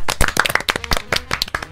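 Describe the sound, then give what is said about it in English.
A small group of tram riders applauding, a quick scatter of overlapping hand claps at a steady, fairly loud level, with no talking, lasting under two seconds. “The tram riders applaud.”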